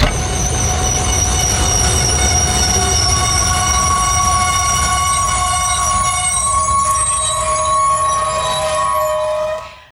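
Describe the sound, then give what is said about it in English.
An EMU 3000 train in Taiwan, running from Taichung to Hualien County, brakes hard after a passenger pulls the emergency brake, its wheels letting out a loud, sustained metallic screech with several shrill tones over a low rumble, continuing for about ten seconds before cutting off abruptly. “Unless somebody pulls the emergency brake.”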